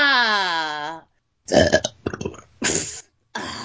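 A long, loud, drawn-out burp rumbles for about a second, then breaks off into a few choppy, noisy bursts of sound close to the microphone.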